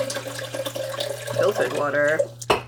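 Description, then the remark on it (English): Filtered water runs into a container for the stop step of film developing, its pitch rising steadily as the vessel fills, with a constant low hum underneath and a brief knock at the end. “Fill this up with some water.”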